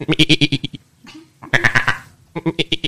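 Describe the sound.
A person bleats like a goat in three loud, wavering bursts, each a rapid series of pulsing nasal cries, with a softer breathy pause between the first two.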